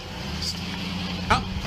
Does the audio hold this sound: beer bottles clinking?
no